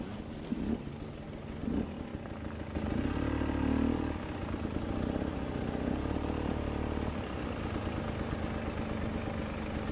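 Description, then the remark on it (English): A small motor engine, like a dirt bike or ATV going down a dirt road, drones steadily for the whole stretch, its pitch rising and falling with revs, louder early on, over a rough clattering rumble. No one speaks. “Is this a vehicle of some kind going down a dirt road? An ATV? Dirt bike?”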